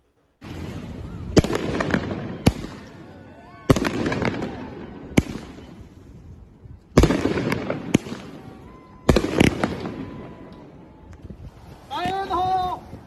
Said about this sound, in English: So very dangerous to be lighting off fireworks right next to what looks to be some kind of tall building.